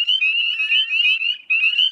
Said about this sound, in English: And in wooded ponds, along with the wood frogs, you'd also hear lots of little spring peepers.